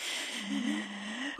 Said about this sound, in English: an audible yawn, just in case.